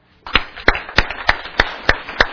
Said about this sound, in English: Now, let me just kind of illustrate this hotbed we're in. Everyone do this. Everyone clap.